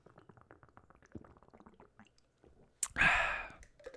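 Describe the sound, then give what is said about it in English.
Wet mouth sounds of someone sipping and swallowing water, small clicks and gulps, ending in a louder breathy gasp after the drink. No talking. “I'm so fucking high, I've been sitting here holding this water in my hand because I've been wanting to take a drink, and I fucking will not stop talking.”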